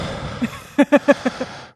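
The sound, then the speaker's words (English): A person imitates a child's heavy mouth breathing on the phone: a quick run of about six short, breathy, voiced huffs, fairly loud, with no talking. “it's just listening to mouth breathing.”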